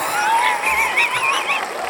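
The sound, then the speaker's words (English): A short burst of cheering, a few high, wavering voices whooping together at a steady, fairly loud level for about two seconds. “I can feel a cheer coming on.”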